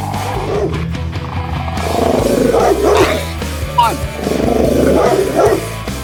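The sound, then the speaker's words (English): Several hounds bark and snarl in loud, overlapping bursts, with deep growls rumbling underneath throughout a few seconds of frenzied canine noise. “Release the hounds.”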